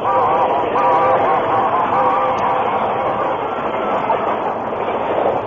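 A steam locomotive races past on the rails in a loud, continuous roar, its whistle, pulled by the engineer, sounding steady tones over the rush during the first half before the noise churns on alone.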